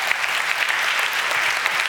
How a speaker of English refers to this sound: God bless you ushers. God bless you home group leaders, connect group leaders, musicians, techie guys. You know, give them all a clap.